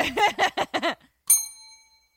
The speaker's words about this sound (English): I like that plan. I'll give a bell for you.